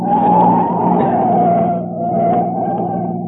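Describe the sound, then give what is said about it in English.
Car tires squeal loudly through a sharp turn as the driver tries to shake a following car in the factory district, a sustained screeching whine over a rumbling engine that wavers in pitch, eases briefly, then rises again over about three seconds. “Let me try shaking, huh? All right. Take the next street through the factory district.”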